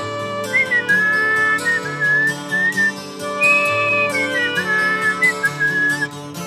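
A clear whistled melody glides and wavers over a full instrumental backing track with steady rhythmic beats, carrying the tune continuously from start to finish.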